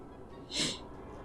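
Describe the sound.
A voice makes a single short, breathy burst imitating a hacking cough that sounds more feminine than masculine. It is fairly faint and stands alone, with no talking around it.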